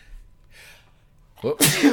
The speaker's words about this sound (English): People love rando sneezes and breaks.